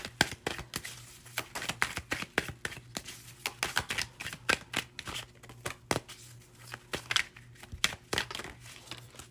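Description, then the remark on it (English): Shuffling of a deck of tarot cards: rapid, irregular papery snaps and riffles continuing throughout, with no talking and only a faint low hum underneath. “The Judgment card came out in my pre-shuffle, so there's some...”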